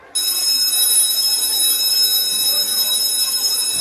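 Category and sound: signal or alarm, school bell ringing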